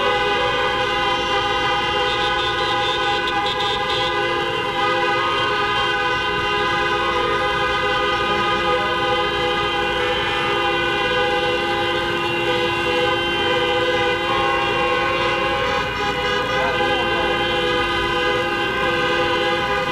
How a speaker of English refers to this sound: And so if you are standing with us as the mayor comes, would you just honk your horn to say you're standing with us?